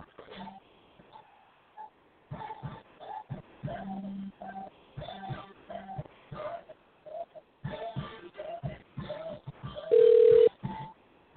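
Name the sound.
phone call ringing tone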